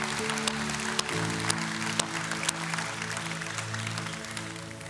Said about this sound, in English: And if you love God, and if you're thankful for God in your life, can we clap for Him one last time, please?